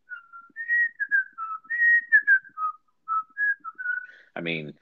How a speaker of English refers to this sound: How often do you whistle that in your life? Like just every now and then, just comes through.